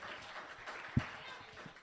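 A quiet wash of audience applause for a contestant after the judges' scores, a steady crackling patter of many hands with crowd murmur mixed in and one sharper clap standing out partway through.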